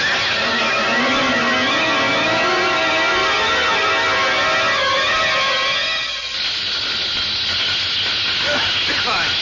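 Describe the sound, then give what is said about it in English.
A house fire burns with a loud, steady hiss and roar. Wavering tones drift through the first six seconds, then give way to dense crackling hiss that continues to the end. “Fire! There's fire all over the place.”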